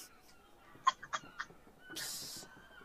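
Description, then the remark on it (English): Two seagulls fighting over a bread roll on a building about 30 feet away give several sharp, harsh squawks in quick succession, followed by a brief rushing burst like a scuffle or flapping wings, with a faint outdoor background. “About 30 feet from you on one of the buildings, there are two seagulls fighting over a bread roll.”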